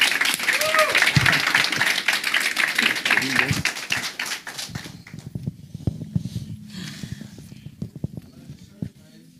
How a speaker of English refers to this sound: Give my man a great round of applause.